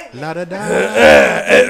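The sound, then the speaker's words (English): A loud, drawn-out throat clearing by a man: a voiced, guttural rumble that rises in pitch and turns into a rough, rasping hack, lasting under two seconds with no speech. “Why you have to clear his throat like that?”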